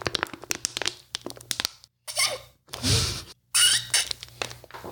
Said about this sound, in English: I'm going to drink from this water bottle. Go for it.